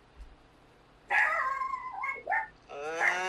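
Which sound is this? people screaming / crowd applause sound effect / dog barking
dog barking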